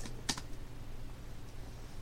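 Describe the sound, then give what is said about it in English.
A single crisp computer keyboard keystroke stands out near the start, followed by a few faint, scattered taps over a quiet hum, with no one speaking. “I'm so interested in looking at the keys that it's hard for me to get a grip and actually type.”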